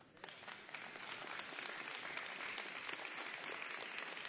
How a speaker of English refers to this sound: That is so appropriate, that applause at that point. That wasn't in the notes.